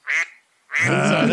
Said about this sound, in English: That's the duck quarterback in the league. The duck sound effect is the new Tua drop. I don't know why it's so simple and silly, but I enjoy it.